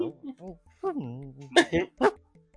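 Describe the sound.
A person imitates a small blink dog giving a little bark, making a few whiny, rising voiced sounds and then two or three sharp little yaps, moderately loud.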